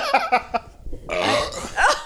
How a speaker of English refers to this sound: I hate burping. I hate flatulence in any form.